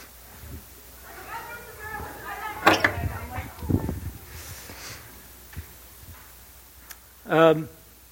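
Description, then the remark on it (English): A church door swings shut partway through with a solid thump and a second lighter knock, amid faint background chatter and a brief loud voice near the end. “I'm just going to grab this door.”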